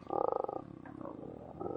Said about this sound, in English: A loud, growling, angry noise starts emanating from the door, and it begins to slide up into the ceiling.